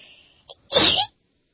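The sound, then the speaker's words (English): A single sharp sneeze bursts out loud, preceded by a brief hissing intake of breath, then silence. “Bless you. Thank you.”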